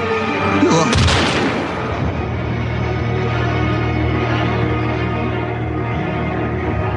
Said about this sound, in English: My gunshot was a little louder than I thought.